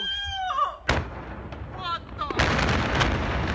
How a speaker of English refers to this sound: That was a huge explosion. It isn't even inside the phone's view. This is crazy, man.